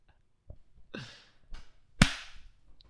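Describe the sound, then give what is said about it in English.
A single sharp, loud hand clap, made to sync a recording, rings out, preceded by a few softer, brief thumps and rustles. No one speaks. “I'm going to have to remember to line up the second clap.”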